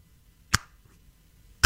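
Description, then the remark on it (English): Two sharp finger snaps, about a second apart, each a crisp, bright crack that cuts off quickly, with near silence between them. “Can you snap your fingers loud?”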